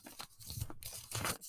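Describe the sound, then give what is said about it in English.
Paper rustling and crinkling in a quick run of irregular crackly bursts, with a few sharper crunchy scrunches, as someone searches for a pencil and paper, with no talking over it. “One second, let me go find a pencil. Pencil. Paper. What is this paper? It is paper.”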